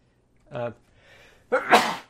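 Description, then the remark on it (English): A single sneeze from a person leaning away from a microphone: a short voiced gasp, a brief breathy pause, then a loud, sharp burst of air that trails off. It sounds slightly off to the side, with no talking. “I tried to lean away from the mic to sneeze.”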